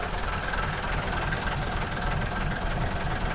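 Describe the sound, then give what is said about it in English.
The diesel engine of a classic bus idles steadily, ticking over with a continuous low rumble and a fast, even ticking knock running through it, loud and unbroken, with no voices. “Let's go and listen to the engine, because this is ticking over like a sewing machine, isn't it?”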